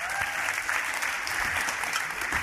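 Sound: audience round of applause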